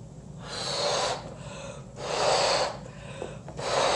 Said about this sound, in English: So you can put one of them in here. I have two different sizes, so I just went out to the garage and I found these. And we're gonna stick them in the balloon before we blow it up, okay? And then we'll blow it up.